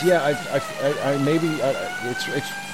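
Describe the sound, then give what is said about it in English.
A steady, high-pitched siren tone holds throughout, fairly loud, coming from a truck or car with a flashing red light behind the speakers' vehicle, while people talk over it in the foreground. “That wee noise, that kind of high-pitched noise. Look behind us.”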